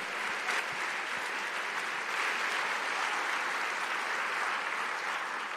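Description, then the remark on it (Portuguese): A crowd applauds Jesus steadily, a dense wash of many hands clapping at once, sustained and fairly loud for several seconds with no voices standing out. “Meu Deus, realmente, aplauda Jesus por isso.”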